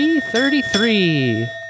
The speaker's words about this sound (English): Ooh, wow, that was... The bell extra cracked. Weird. Yeah, I'm an octave down on my bell.